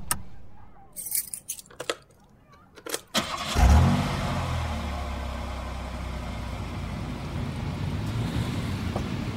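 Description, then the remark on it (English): Keys jingle and a few sharp clicks, then a car engine cranks and roars to life, settling into a steady rumble as the car pulls out of a parking lot and turns down a hill toward the street. “We exited the parking lot and turned down the hill toward the street.”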